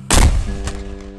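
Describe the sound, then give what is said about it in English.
A cannon blast booms out suddenly, followed moments later by a second sharp crack as the cannonball hits the thick stone wall of the Free State Hotel, and a long, ringing rumble that slowly fades. “The second cannon was then loaded.”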